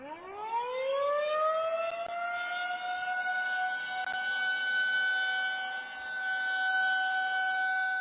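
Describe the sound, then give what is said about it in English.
A town's noon civil defense siren, part of the emergency alert system and sounded every day at noon, winds up from a low growl to a steady, loud wail and holds that sustained tone, with a slight dip in volume partway through as it rotates. “There goes the noon siren.”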